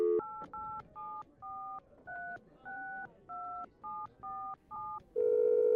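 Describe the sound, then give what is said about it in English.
A phone keypad is dialed to call a number back: about eleven short dual-tone beeps in a quick, slightly uneven rhythm, followed by a steady dial or ringback tone, clear with a faint background hum. “Call back. See if they play it again.”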